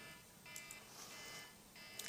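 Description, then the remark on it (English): An electronic alarm sounds on its own, a steady buzzing tone with short bright beeps pulsing over it, fairly quiet and continuous for about two seconds. “And kind of an alarm did go off.”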